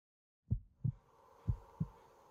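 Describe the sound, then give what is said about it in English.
A pounding heartbeat sound effect: two deep, thudding lub-dub beats in a steady rhythm, heavy over a faint low background hum. “He could feel his heart pounding in his chest”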